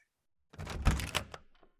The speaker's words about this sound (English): I will open the door.